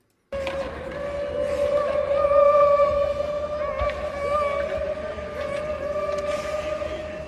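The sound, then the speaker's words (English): In a locker room, a group of players making a train imitates a train whistle, holding a loud, steady, high-pitched tone with harmonics for about seven seconds, swelling slightly midway, over a noisy background. “They're out there making a train and choo-chooing.”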